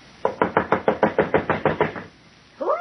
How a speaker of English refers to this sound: Coming. I'm an old woman. You knock like the very devil's behind you.